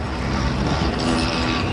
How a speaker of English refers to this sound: As in most of the world's cities, there's one sound that dominates in Tunisia's capital, Tunis: the traffic.